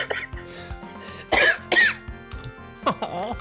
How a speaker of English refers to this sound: I'm also coughing.